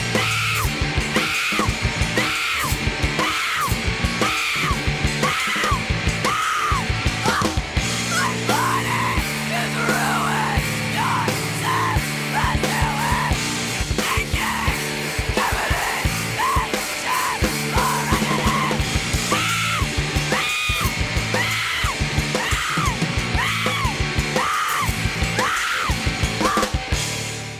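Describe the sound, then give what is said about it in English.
A woman's harsh screamed vocals tear over a loud, driving band on stage, with pounding drums and dense distorted instruments filling the whole half minute at steady, full volume. “So I would get onto stage and I would start screaming my lungs out”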